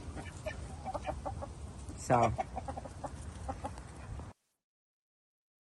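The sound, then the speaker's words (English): Frightened hens cluck repeatedly in short, scattered bursts, with one louder, drawn-out squawk partway through. A brief spoken word is barely heard over the steady clucking, which then cuts off abruptly. “To the point where some of the hens actually let me snuggle them because they were so freaked out.”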